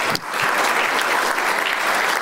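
A crowd breaks into sustained applause, a dense, steady wash of clapping that starts abruptly and stays loud and even throughout, with no voices standing out.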